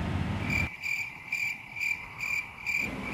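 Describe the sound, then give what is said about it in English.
A cicada chirps steadily in shrill, pulsing bursts, about two per second, clear with no voices, over a faint low background rumble. “The cry of the cicada gives us no sign that presently it will die.”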